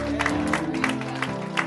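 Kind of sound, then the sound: crowd, audience applauding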